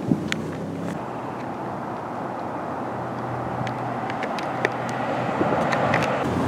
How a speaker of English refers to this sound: Cars are going back and forth. This is a weekend, and businesses, the lots are largely empty, but it's not nearly a standstill right here either. But certainly things, people are staying inside today, but yeah. Fair number of cars driving through.